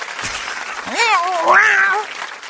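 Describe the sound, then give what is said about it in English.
Screeching cats in a fight: one loud, drawn-out yowl rises and wavers for about a second over a hissy, crackling background, harsh, with no talking. “You know what this is? Good old-fashioned cat fight.”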